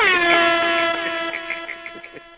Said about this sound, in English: Hold on. Let me do air horn.